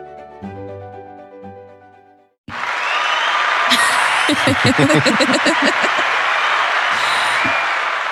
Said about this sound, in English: Long ass applause. Long ass applause.